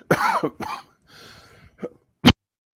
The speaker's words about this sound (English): I've got a cough, and I put on my cough button and forgot to take it off.